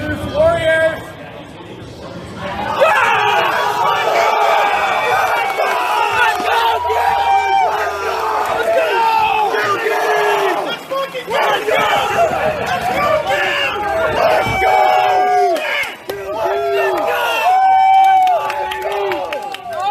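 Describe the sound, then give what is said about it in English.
A crowd in the VIP section of an audience cheers and shouts loudly and continuously, many voices overlapping in excited yells and whoops that rise and swell throughout, with no single voice standing out. “It's in the VIP area of our crowd.”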